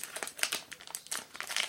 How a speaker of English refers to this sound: Are you unwrapping another ice cream now? Yeah. You're on like 20 a day.